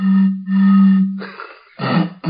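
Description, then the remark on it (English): A voice imitates a blocked steam train: two long droning hums give way to loud bursts of breathy, hissing chuffs, with no ordinary talk. “That's an impression of a steam train that's been blocked.”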